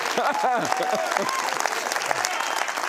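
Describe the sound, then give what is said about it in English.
An audience claps steadily for about three seconds, a dense, even patter of many hands, with a voice or cheers rising briefly at the start. “I want applause on that, too.”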